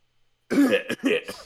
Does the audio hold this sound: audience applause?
no